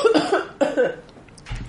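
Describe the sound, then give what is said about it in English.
Two raspy coughs in quick succession, the second slightly weaker, followed by a brief quiet stretch with a faint shuffle. “I shouldn't be coughing on air.”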